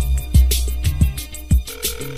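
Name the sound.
outgoing phone call ringing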